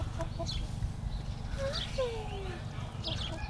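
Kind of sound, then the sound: animal, chickens clucking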